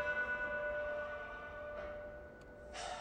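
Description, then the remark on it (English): Church bells ring with a sustained, humming tone, and a couple of fresh strikes land near the end, evoking Miguel Hidalgo sounding the bells to unite his people. The peals sound fairly soft, with no voices. “It all began when Miguel Hidalgo united his people by sounding the bells.”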